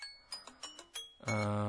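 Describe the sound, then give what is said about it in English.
An Android phone's default timer chime: five quick electronic blips stepping upward, then a sustained, bright harmonic tone that rings out steadily at moderate volume, with no voices. “It's the default for the Android phone.”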